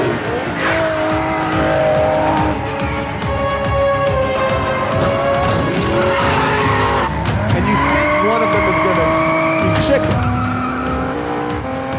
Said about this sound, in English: Just picture Vin Diesel and The Rock just driving fucking cars into each other. They're so mad at each other.